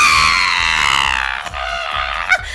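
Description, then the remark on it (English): A person imitates a goat's bleat loudly: a high, strained, wavering cry that holds for over a second, then breaks into shaky, trembling pulses before a final sharp yelp. “And the sound of my bleating, it breaks any locks or door mechanisms that were keeping our fellow farm animals restrained.”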